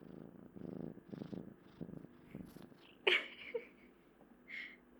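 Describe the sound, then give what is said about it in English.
A cat named Emmett, a big male cat with massive paws, purrs in steady rumbling pulses, with soft rustling, a brief sharp thump midway, and a faint higher squeak near the end; no one speaks. “He's that's purring Emmett. Up a storm.”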